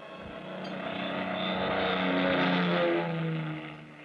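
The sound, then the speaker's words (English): A steady engine drone from a large plane gliding down at 11:30 p.m. out of a clear starlit sky toward Las Vegas, Nevada, hums for several seconds, swelling gently to a peak and then easing off, with a low rumbling tone and a wash of higher noise, no voices. “It was 11:30 p.m. when the big plane slowly glided down out of the clear starlit sky.”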